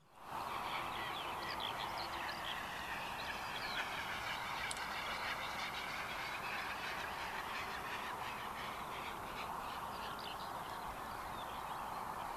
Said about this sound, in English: And the bird is Great Bustard. Look at this big bird.